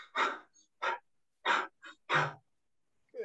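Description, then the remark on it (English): A person demonstrates rapid, shallow, stressed breathing, about five quick, breathy huffs in close succession with brief gaps, loud, with no talking. “So just imagine, when might you see someone breathing like this?”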